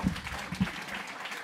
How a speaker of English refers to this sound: It's wonderful, and we appreciate so many times the worship team. We can appreciate them again if you can give them a round of applause.